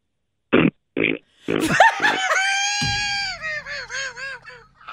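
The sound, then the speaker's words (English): A person does a throat-clearing snort, as if clearing the throat without phlegm, sounding like a pig oinking: two short, sharp nasal snorts, then a longer croaking, honk-like vocal noise that wavers in pitch, fairly loud. “And you also had that little kind of snort thing you would do, to like you were clearing your throat without any phlegm in it.”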